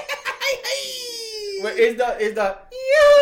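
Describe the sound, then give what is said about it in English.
A person imitates a traditional Mexican grito: a loud, yodel-like vocal cry that slides down in pitch, breaks into warbling, trilling yips, then rises again into a sustained high yell. “So it's like they're yodeling over there. Yes, that's the traditional Mexican scream.”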